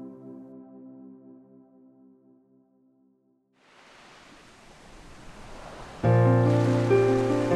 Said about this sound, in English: The sound of the sea, relaxing waves, and soothing music.